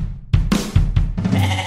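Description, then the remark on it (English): A young goat bleats several times in quick succession, fairly loud, each call a wavering, nasal cry with no talking underneath. “So, folks, this is not the goat. This is The Kid.”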